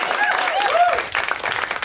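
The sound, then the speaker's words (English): An audience breaks into applause for someone finishing their first year of school, a dense, steady wash of many hands clapping for about two seconds, with a few raised voices mixed in early before individual claps stand out toward the end. “Yeah, you can all clap for that.”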